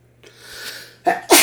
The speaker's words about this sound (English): A sneeze.